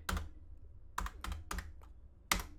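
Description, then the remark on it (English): Numbers are tapped out on a computer keyboard while someone does a math calculation: about six crisp, sharp key clicks in an uneven rhythm, with short pauses between presses and no voices. “All right, I'm punching the numbers.”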